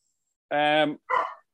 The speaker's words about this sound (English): Can you hear a dog? Yeah, no, that's good. Yeah, he's all right.